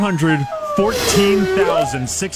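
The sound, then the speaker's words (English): Whale song: long, moaning calls that glide up and down in pitch, overlapping one another in a continuous, fairly loud stretch with no talking. “That's not more Jack Fiddle play. Those are whales.”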